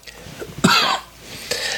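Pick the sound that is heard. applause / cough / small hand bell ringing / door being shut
cough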